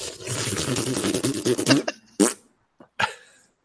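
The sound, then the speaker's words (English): A long, loud, sputtering fart with a rippling buzz, followed by a few shorter bursts and puffs that trail off into silence. “That was him farting. That was just a straight fart.”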